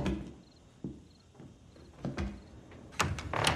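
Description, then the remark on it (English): A door to another floor of a house, leading to stairs, opens with a few knocks and clunks, then a scraping, sliding rush near the end. It's moderately loud, with no one talking. “Ah, here's the door.”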